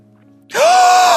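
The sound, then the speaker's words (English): A single loud, sudden gasp bursts in after a brief quiet moment: a sharp, breathy intake of air with a high voiced squeak running through it, held for well over half a second. “Why did you just gasp like that?”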